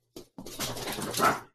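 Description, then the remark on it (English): A short yelp followed by a longer, high-pitched whining bark from new puppies, fairly loud, with no talking over it. “Sorry, my dogs were just going nuts. I got new puppies.”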